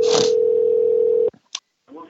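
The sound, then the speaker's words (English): A loud, steady telephone ringing tone hums for just over a second, then cuts off with a click as the line is answered, and a faint voice begins at the end. “I get butterflies every time we're sitting here waiting for it to ring.”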